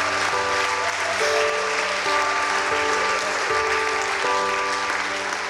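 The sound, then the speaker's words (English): An audience gives everyone in the building and online, including young people, a loud, dense, continuous round of applause for the whole stretch, while sustained keyboard chords shift underneath every second or so. “We want to say today, whoever you are in this building, online, young people, we give you a round of applause today.”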